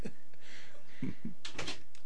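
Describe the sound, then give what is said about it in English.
A pet dog scratches at a door in several short, raspy bursts, moderately loud, with brief pauses between the scrapes and no voices. “You can't scratch on the door.”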